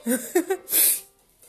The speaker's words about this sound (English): Oh my God, I'm about to sneeze.